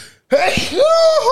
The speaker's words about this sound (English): live sneeze.